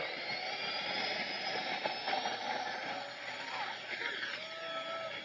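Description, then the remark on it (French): A jet airplane built by a young aspiring aircraft maker roars steadily through its takeoff, a dense, sustained rush of engine noise with a high whine threaded through it, loud and continuous with no voices. “Comme sur une piste d'atterrissage, les avions fabriqués par cette étoile montante décollent et atterrissent à la minute.”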